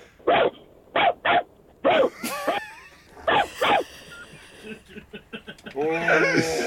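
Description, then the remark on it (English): A person imitates a bigger dog barking at a little dog: deep, punchy woofs in quick bursts, then higher yappy barks and whiny yelps, ending in a strained, rising howl, all loud. “Can you do the bigger dog barking at the little dog? They're barking at each other.”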